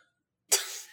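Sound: cough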